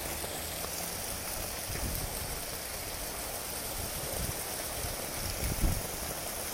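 Steady, broad rush of gushing water from large jets pouring into a pool, constant, with faint low splashes beneath and no voices.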